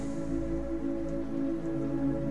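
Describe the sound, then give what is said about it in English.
A steady, soft patter of rain falls continuously on city street pavement, with no distinct drops standing out, over a low sustained hum. “The rain is a constant presence in this city. A soft patter that serves to only heighten the eerie feeling of the place.”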